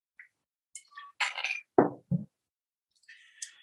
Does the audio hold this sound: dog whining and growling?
no